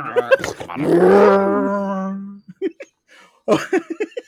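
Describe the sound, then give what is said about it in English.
A voice imitates a car engine, making a sustained, rumbling vroom lasting over a second, its pitch wavering slightly, then breaks off into short bits of ordinary talking. “shut your door and make engine noises.”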